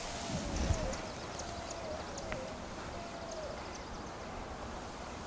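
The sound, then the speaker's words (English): A verdin gives a series of thin, high chip notes in a wash during a bird count, spaced irregularly over steady outdoor rumble with a faint whistle in between. “One verdon, I just heard it. That's the verdon.”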